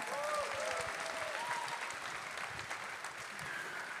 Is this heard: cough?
no